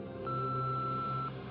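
A single sustained touch-tone beep from a phone keypad as a call is placed, steady and clear for about a second over a low background hum, with no voices.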